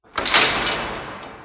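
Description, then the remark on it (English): A storeroom door is pulled shut and locked with a sudden scraping rush that trails off over about a second, heard alone with no voices. “I slipped into the storeroom and locked the door.”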